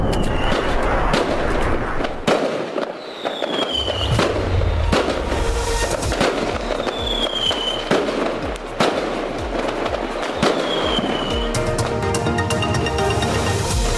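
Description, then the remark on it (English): Fireworks going off for Diwali in a rapid barrage of sharp bangs and crackles, with whistling rockets rising and dense popping throughout, loud and continuous with no voices. “It's Diwali! So let's have a celebration!”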